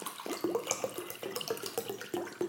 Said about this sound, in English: Did you fucking have to hit record before you filled the water bottles up? I should have probably put water in there first.